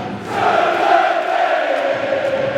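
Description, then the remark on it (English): A big sellout football crowd chanting and roaring together, a steady, loud wall of massed voices that swells slightly and holds without a break for a few seconds. “Crowd in good voice.”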